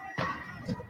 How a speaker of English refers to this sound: Fireworks shot at a column of police officers.